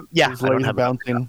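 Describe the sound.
A person hums a short, wavering tune, the voice steady and fairly loud across a few connected phrases with brief dips between them.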